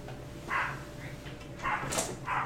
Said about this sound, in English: Canoa dog. I freaking choke that thing. Canoa. Our neighbor's dog is named after Canoa Igarashi.